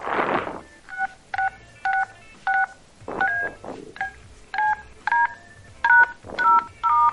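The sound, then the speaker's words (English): A rapid run of touch-tone phone dialing beeps as someone dials to ring a number back, about a dozen short dual-pitched tones pressed in quick, slightly uneven succession, clear, with faint handling rustle between some presses. “I'm ringing it back.”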